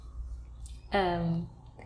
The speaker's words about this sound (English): Apologies to any podcast listeners who just heard my burp. I will not edit out the burps. It's a good thing.